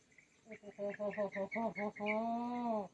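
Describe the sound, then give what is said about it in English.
A chicken calls: a quick run of about eight clucking notes, then one longer, drawn-out squawk, fairly quiet and with no talking over it. “Ese creo que es gallo, ¿verdad?”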